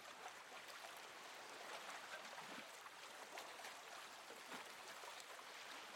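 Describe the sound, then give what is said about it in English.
Soft, steady water sounds of very gentle waves lapping at the shore of a calm lake, a continuous quiet wash with faint splashes and trickles, no voices. “As we bring our attention to the present moment, we begin to hear the sound of the very gentle waves coming from the shore.”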